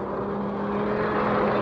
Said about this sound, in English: Hey, look! Here comes another one. Looks like he's chasing the car that passed.